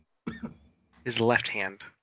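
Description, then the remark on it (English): A man coughs in two harsh, throaty bursts, the second one longer and more strained, with a short pause between them. “He's coughing.”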